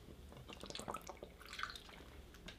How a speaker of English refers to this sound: Oh, I just dumped water all over myself. Because I didn't want to put my lips on it because I got blunt tar on my lips, but fuck it.